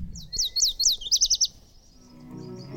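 A rare southwestern songbird sings a brief, clear phrase: three high downslurred notes followed by a quick run of four rapid chirps, crisp, then fading into quiet background.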